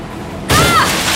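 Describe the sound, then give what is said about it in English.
A truck slams into a tree with a sudden, loud crunching impact about halfway through, followed by a dense roar of noise and a brief high metallic whine. “The truck crashes into a tree.”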